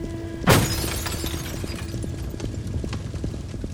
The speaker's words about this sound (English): We mashed the window out, broke all the glass out, and one of those guys pulled this guy out of his car.